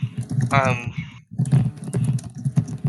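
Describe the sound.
Rapid, irregular clicking of fingers typing on a computer keyboard, steady, with a brief burst of someone's voice over the keys early on.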